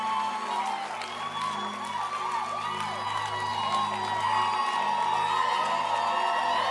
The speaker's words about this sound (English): So clap your hands and let's celebrate our pastor.